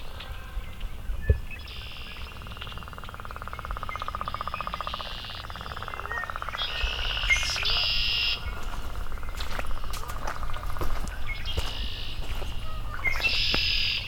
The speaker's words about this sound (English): Oh, some tree swallows.